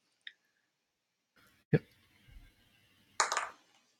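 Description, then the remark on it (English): A few sharp clicks and clatters of dice rolled on a table arrive in separate bursts, a brief tick, then a loud knock with a short rattle, and a final scattered clatter tumbling to a stop, landing on a 1. “Oh, I just rolled a 1.”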